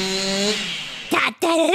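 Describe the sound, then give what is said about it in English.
A chainsaw's steady, buzzing engine drone runs loudly, then winds down and cuts out, and a voice starts talking right after it stops. “Can't hear you over the chainsaw.”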